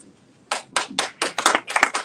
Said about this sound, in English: Let's give all of our teachers and all of our classified staff a round of applause.